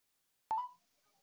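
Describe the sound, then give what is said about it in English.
A single short electronic phone tone, from a phone call being placed to reach a guest, cuts in abruptly after silence, holds a steady pitch for a moment, then fades quickly with faint traces trailing off. No voices. “So you all will hear a little ringing going on, but we're going to try to get our special guest, our beautiful future, on this evening.”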